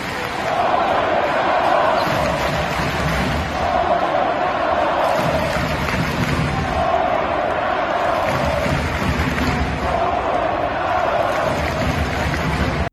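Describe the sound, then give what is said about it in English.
A crowd of about 8,050 at the Moda Center arena roars and chants in unison for a basketball player leaving the game late in the fourth quarter, a steady wall of cheering voices echoing through the space with rhythmic swells, and faint bouncing sounds beneath; recorded on a cell phone from the top of the lower bowl. “how do you get the crowd of 8,050 cheering you on after you've checked out the game”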